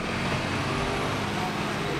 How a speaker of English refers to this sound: Over the course of our hour-long interview, those kids were forced to evacuate the street 8 times before a trash truck came barreling down the narrow street.